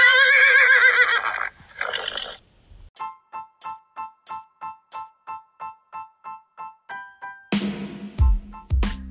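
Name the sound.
horses neighing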